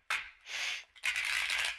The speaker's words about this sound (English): I'm just going to shuffle these cards.